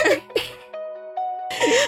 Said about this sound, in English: I have 2 sneezes. If it's more than 2, you're doing it on purpose.